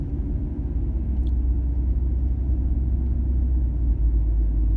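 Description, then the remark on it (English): A steady, loud low-frequency rumble of a car engine and tires on the road, heard from inside a moving car driven at a moderate speed, continuous throughout with no voices. “I'm driving, like, a good speed, but I don't really, like, want to be.”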